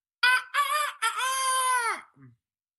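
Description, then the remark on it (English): A person imitates a rooster's crow, a loud cock-a-doodle-doo in three bursts ending in a long held note, followed by a soft low grunt. “That's actually a really good impression. I could like just leave that in and not have to put the rooster one in.”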